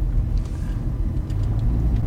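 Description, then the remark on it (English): A car engine runs steadily at low speed as the car backs out near the border of Luxembourg, a deep continuous rumble with faint higher clicks and rattles scattered over it, no voices. “Okay, so we get out of the car, we walk to Luxembourg, we eat jelly babies.”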